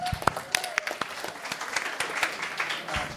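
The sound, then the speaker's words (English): An audience breaks into applause, a dense patter of many hands clapping steadily for a few seconds at moderate volume, with faint crowd murmur mixed in. “Can we give her a round of applause?”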